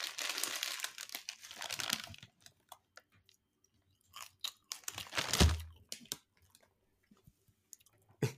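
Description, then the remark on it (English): Crisp crunching and chewing of seeds, with a burst of crinkly crackling at the start and irregular bites and munches continuing throughout, no talking. “These seeds, I don't know if you heard how good they were.”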